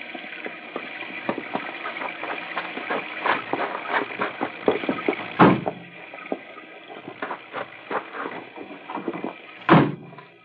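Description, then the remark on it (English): Car doors being opened and handled with rattling clicks and clunks, punctuated by two loud slams a few seconds apart against a low background rumble. “I'll open the car doors.”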